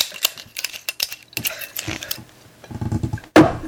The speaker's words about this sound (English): Hang on, I was going to fetishize putting the lid back on the bottle.